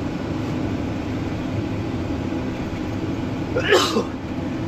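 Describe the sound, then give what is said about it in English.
A single short, sharp sneeze bursts out near the end, fairly loud, over a constant low engine-like rumble that fills the whole recording. “Bless you.”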